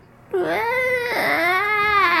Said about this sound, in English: That's right, it's a giant screen door opening. With a big angry cat behind it.